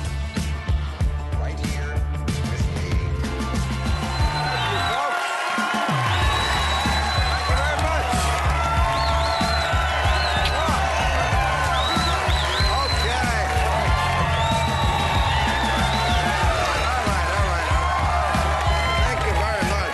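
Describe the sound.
A loud late-night TV show studio audience cheers and whoops continuously, with scattered shouts and whistles rising over a steady roar of applause and voices, sustained throughout.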